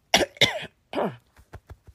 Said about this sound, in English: Sorry about that. I felt like I had to clear my throat.